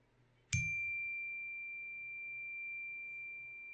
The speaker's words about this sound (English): And I'm going to start us off with a nice little chime sound, so just get ready to settle in.